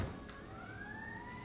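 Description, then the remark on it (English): Two ambulances' sirens wail steadily, the tone sliding slowly upward, fairly loud, with low traffic rumble underneath and no one speaking. “It's two ambulance”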